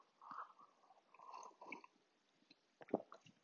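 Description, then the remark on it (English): A few slurping sips of hot coffee are followed by a soft swallow and a small click near the end, with no talking. “Anyway, coffee sip.”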